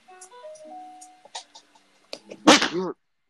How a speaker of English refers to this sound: Ah, shit. Sneeze, bro. I don't want to sneeze.